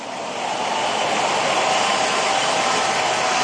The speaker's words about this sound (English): Everyone in church, give the Lord a big hand of praise. Give him a more than conqueror's clap of praise.